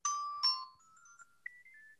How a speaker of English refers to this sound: Yeah, that's actually …'s ringtone. So if you get a call from that, don't pick it up.